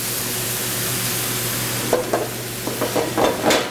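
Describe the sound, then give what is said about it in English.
Steady hissing sizzle of food browning as it fries in a pan, with a low hum underneath; after a couple of seconds, irregular scraping and stirring bursts break through the crackle. “And this should be just starting to brown in here. And it is.”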